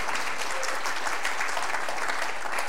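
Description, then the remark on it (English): A church audience at Trinity Baptist Church in Sun City claps steadily, a dense, even wash of many hands at a moderate level with no clear individual beats, sustained throughout without pauses or voices. “I didn't really mean unique in like a applause way, but that's great.”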